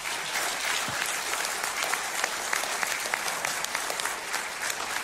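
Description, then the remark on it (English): An audience claps steadily to honor the man who oversaw the building's construction, a dense wash of many hands with fine, rapid crackles at an even level through the whole stretch, with no voices standing out. “Yeah, let's just give it up for him one more time.”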